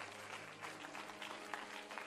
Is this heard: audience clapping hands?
yes